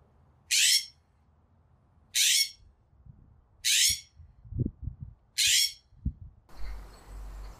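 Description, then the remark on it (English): A California scrub jay gives four harsh, rasping calls, each about half a second long and evenly spaced. They sound loud, with faint low thumps between them and a hissy background near the end. “That first one was a California scrub jay again, and the second was a spotted towhee.”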